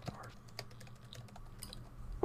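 Rapid, irregular clicking of keys on a computer keyboard at a PC, fairly quiet, with a steady low hum underneath and no one speaking, while a Google search for the Starfield release date is typed.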